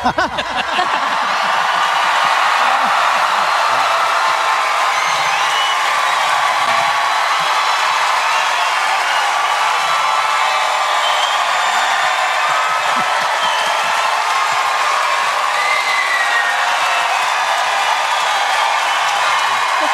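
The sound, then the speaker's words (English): A large audience claps and cheers steadily for about twenty seconds, a dense, loud wash of applause with scattered whoops and laughter, no speech over it. The audience is at a Daily Wire backstage live show at the Ryman Auditorium in Nashville, Tennessee. “Big clap in 3, 2, 1.”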